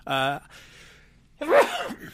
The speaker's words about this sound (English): There you go. Boy, what a way to end the show with a great sneeze.